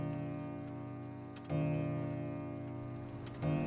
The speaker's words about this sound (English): So just close to midnight when everyone is settling in, and just as the clock strikes 12.